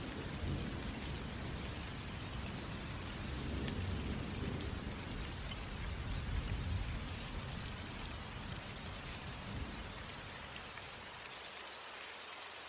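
A light thunderstorm: steady rain patters down across the whole stretch while low, rolling thunder rumbles underneath, swelling in the middle before easing off toward the end. No one speaks.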